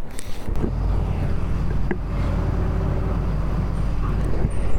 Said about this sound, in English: Got another boat coming up here. Looks like some more tourists are going to get off the boat.